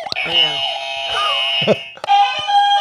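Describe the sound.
A small game buzzer is hit and sounds a loud, steady electronic tone that runs for about two seconds, then a second buzz starts, with voices chattering over it.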